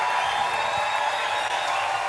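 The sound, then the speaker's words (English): A live audience applauds and cheers, a dense, steady wash of clapping and crowd noise that holds at an even loudness throughout, with no single voice standing out. “We're still cheering.”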